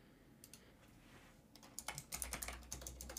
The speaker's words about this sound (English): There goes the typing again.